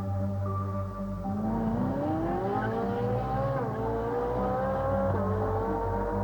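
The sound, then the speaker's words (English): A car driven recklessly speeds along with its engine revving hard, the pitch climbing steadily and dipping at gear shifts before rising again, loud throughout with no voices. “I have never driven with such reckless abandon.”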